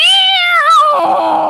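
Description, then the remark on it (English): A person imitates an angry cat's yowl: one loud, drawn-out, wavering cry, bending in pitch before settling into a lower, rougher tail. “I'm a good cat ventriloquist.”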